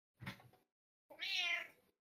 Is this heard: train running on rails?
no